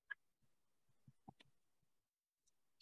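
Dice rattle and clatter across a hard surface in a short burst of irregular clicks, with a sharp tap at the start and another at the end, fairly quiet; two six-sided dice (2d6) rolled for a greatsword's damage.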